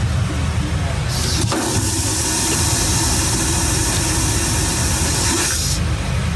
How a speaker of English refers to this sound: That sounds like someone's filling up the toilet and pressing the flush button. It sounds like the toilet being used in the place. Yeah. That was the toilet being flushed.